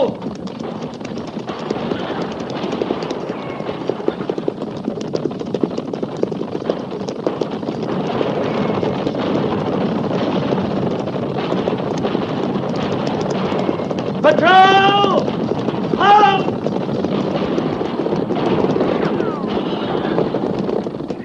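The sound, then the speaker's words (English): Cavalry horses gallop near the Oregon Trail toward a wagon train under attack by at least 50 Cheyenne, pounding steadily in a dense, rumbling clatter, with scattered gunshots mixed into the din and a brief high cry rising above it partway through. “Guns, Captain. At the gallop! Ho!”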